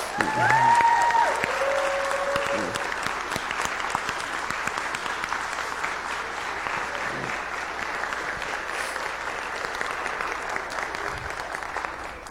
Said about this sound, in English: Would you please give her a round of applause for me?